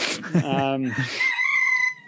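A rooster crows once, a loud, drawn-out call that rises and then holds a strained, high note for about two seconds, with no talking over it.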